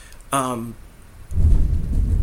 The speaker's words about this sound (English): It's thunder. It's about the storm, it sounds like.